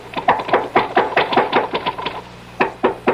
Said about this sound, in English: If you get to the top, just bang on the trap door. Well, yes, thank you. Bang hard so he'll hear you.